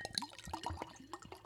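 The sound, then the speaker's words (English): Sherry being poured to top off a glass for a toast, a short burst of bubbly gurgling and dripping with rising pitch as the glass fills, fairly quiet with no talking. “So get your sherry. I'm going to top it off.”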